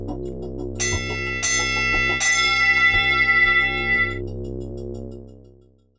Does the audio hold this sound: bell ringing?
yes